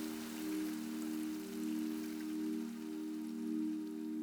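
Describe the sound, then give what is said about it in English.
Steady rain patters continuously over a low, sustained droning hum, softly swelling and easing in gentle waves. No one speaks. “Watch them turn to rain, fall, and wash away.”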